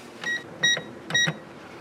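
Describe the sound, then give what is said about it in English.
A cash register, its key turned to REG, rings up a customer's items including clothing with three short, high electronic beeps at an even pace, each with a soft clack of keys, and no one talking. “Put this in the register and turn the key to REG.”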